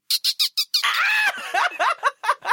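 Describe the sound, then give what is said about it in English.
A person imitates a dolphin: four quick high-pitched chirps, then a long warbling squeal, followed by a run of rapid squeaky chatters, loud and with no talking over it. “Are you trying to get me to do my dolphin noise?”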